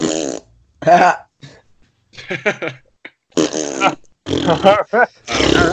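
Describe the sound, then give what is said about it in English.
A person makes a long, wet fart noise with the mouth, sputtering and buzzing in several bursts with short pauses between, fairly loud. “Give us one fart noise before we exit.”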